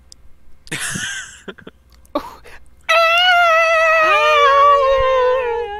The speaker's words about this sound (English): That's the sound my cat makes at 3 in the morning because it wants food.